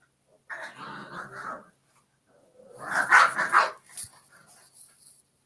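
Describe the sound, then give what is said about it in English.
Dogs bark and snarl in two scuffling bursts as they fight over a chew, a growly tussle with sharp yips and whines, moderately loud, with a brief pause between the outbursts. “Can you hear my dogs again? You're fighting over the antel.”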